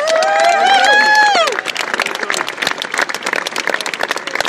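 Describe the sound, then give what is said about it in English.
A crowd claps steadily in a dense, crackling round of applause at a golf championship presentation, preceded at the start by a brief burst of raised, cheering voices that fade as the clapping carries on. “A round of applause also for the chairman of the Lynch Championship Committee,”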